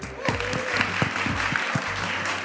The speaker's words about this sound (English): So give yourself a big round of applause, everybody.